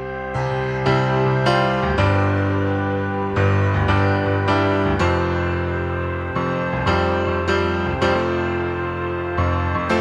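A pop rock song plays on its own at a steady, fairly loud level, full band with sustained chords and a regular beat of sharp accents, no talking over it.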